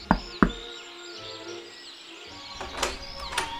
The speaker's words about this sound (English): Reaching the spacious front porch of the expansive plantation house, he straightened his bow tie, smoothed the very beginnings of what he hoped might one day be a fine southern gentleman's mustache, and knocked on the door.